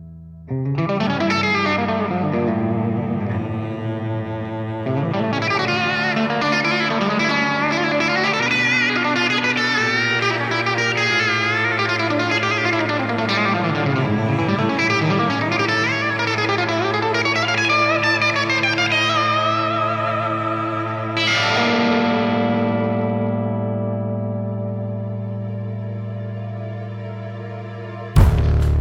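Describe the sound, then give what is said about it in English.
A hypnotic song intro of heavily effected, shimmering chords, including D minor and B diminished, sustained and swirling over a steady low drone, with no voices; the texture swells, then settles into a long fading tail. “You know, the stained glass intro, though, on that song is really hypnotic.”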